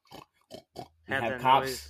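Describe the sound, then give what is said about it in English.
A person imitates a pig, giving three short, clipped oinks followed by a longer, louder squealing snort, with no other talk. “Professor with Pig the oinkster. Cool. Oink, oink.”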